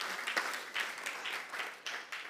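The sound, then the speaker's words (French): A crowd clapping their hands, a dense, steady patter of many claps with rhythmic surges of louder beats, moderately loud, with no voices over it. “And you, yeah, clap your hands. Go ahead, you clap.”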